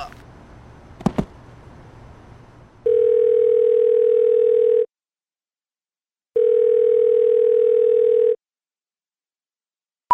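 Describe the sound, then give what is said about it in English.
A telephone ringback tone purrs twice, each steady buzz lasting about two seconds with a pause between, with no answer. A sharp click and faint low rumble come just before. “What's with this not answering the phone?”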